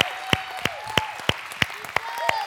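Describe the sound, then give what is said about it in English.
An audience claps hands in praise of God in a steady, even rhythm, sharp claps about three per second, with scattered voices calling out and whooping beneath the clapping. “I mean, let's just give Him a little hand clap of praise this morning.”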